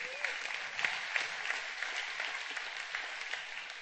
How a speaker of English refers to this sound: I like applause even if it's cheap.